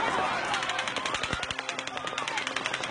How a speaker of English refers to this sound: It was the deadliest mass shooting in modern U.S. history. They put the floodlights on. And then we heard the gunshots kept on going on.